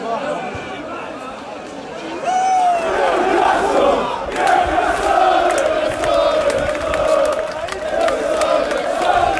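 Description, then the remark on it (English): A large crowd of Newcastle United fans cheers and chants together outdoors around St James's Park on the day the club's sale was confirmed, a dense, sustained roar of many voices with shouts and whoops rising above it, swelling louder after a quieter opening couple of seconds. “what you'll hear now is the atmosphere around St James's Park from various points in the day”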